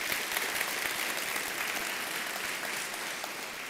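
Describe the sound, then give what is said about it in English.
A crowd claps steadily and densely for several seconds, a sustained wash of applause at an even loudness with no voices standing out. “Can I get an applause for this?”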